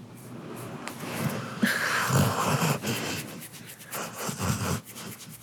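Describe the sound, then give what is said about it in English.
A dog named Ethel snores raggedly while awake, just after waking in the morning, with several rough, wheezy snorting breaths in an uneven rhythm and no talking. “She's snoring while she's awake.”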